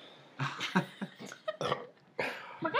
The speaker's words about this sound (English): Oh my god, I can't believe you burped in my face. That was so gross.